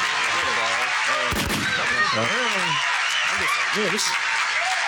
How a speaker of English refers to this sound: Can you get some hand claps for that real quick